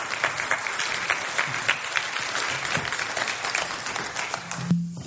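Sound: round of applause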